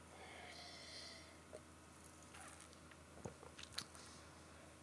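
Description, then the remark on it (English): Someone takes a couple of quiet sips of Bellwoods Brewery's Intermodal 2022 on peaches beer, with soft slurping and wet mouth clicks against a faint background hiss, and no talking. “I'm going to talk to you about food, but I need another sip of this.”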